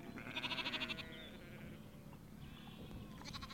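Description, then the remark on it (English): A sheep on the back side of a hill lets out a loud, quavering bleat, then another starts near the end, over a steady low outdoor rumble. No one speaks. “come down on a summer's day and there could be 200 people on this bank looking towards the lake, playing and sunbathing and doing whatever they want to do, and the sheep on the backside of the hill just tucked out of the way and enjoying it as well.”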